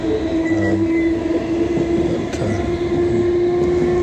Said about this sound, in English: Train is all wiggly and bouncy.